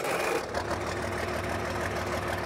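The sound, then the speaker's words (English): A tractor, rebuilt to almost brand new other than the frame, idles steadily with a low, continuous rumble and a faint rhythmic knock; no voices. “This tractor actually is almost brand new, other than the frame.”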